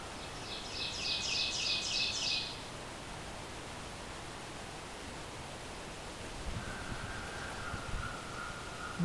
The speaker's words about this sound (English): I can see some small birds up in the tops of the red pine here. Might be pine warbler.